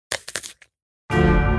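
A crisp bite into a green apple: a quick series of loud, crackling crunches lasting about half a second, then a brief pause before a steady, buzzing tonal sound begins.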